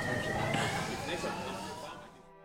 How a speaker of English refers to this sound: Can you hear the sirens, the ambulance? Welcome to Jerusalem.